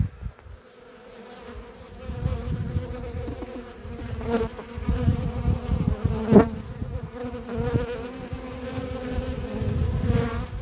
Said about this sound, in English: Okay, listen to these bees. I'm going to put you down by the feeder.